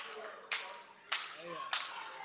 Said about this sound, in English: Crowd's getting behind her, building the crowd. They got the steady clap, trying to get her on her feet.